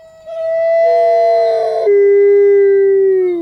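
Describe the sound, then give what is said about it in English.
Wolves howl in a long, sustained chorus of overlapping tones, one voice sliding lower near the end, loud with no talking. “Why do wolves howl?”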